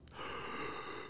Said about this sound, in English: Do you turn up my breathing? Maybe she thinks I mean, maybe she's mistaken because I breathe very loudly.